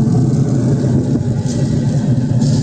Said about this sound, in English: That thing sounds like a freaking blowtorch. Does your Traeger sounds like that?